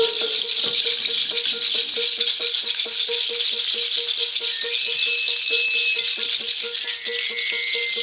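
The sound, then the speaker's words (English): A nut rattles around in the bottom of a boat while people paddle, a fast, continuous clatter of loud clicks lasting throughout, with a steady hum and a few thin squeaks behind it. “The nut kept moving around in the bottom of the boat. With the sounds coming out.”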